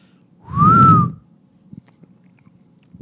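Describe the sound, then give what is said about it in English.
A person whistles a single short swooping note that rises then falls, with a breathy whoosh underneath, imitating a swoosh; faint mouth clicks and small noises follow in the quiet. “It's a whistling swoosh.”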